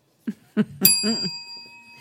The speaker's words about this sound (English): I did not hit that bell.